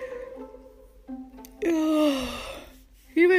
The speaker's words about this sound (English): Even just talking about it, I just yawned. How rude.